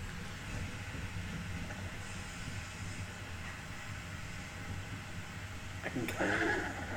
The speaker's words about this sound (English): Trilling the sound of a content bear, which is a minute-long video from the Toronto Zoo. Let me see. I need to know this for science. Thank you, Toronto Zoo, for providing this sound bit.